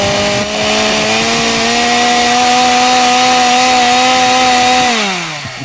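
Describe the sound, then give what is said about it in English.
A chainsaw engine runs loud at a steady high rev with a buzzing, raspy whine, then winds down near the end as the throttle eases off. “The two scariest sounds to me, a chainsaw and a whistling tea kettle that somebody's not grabbing.”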